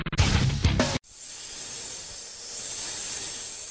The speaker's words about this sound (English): Ah, the sound of sizzling steak.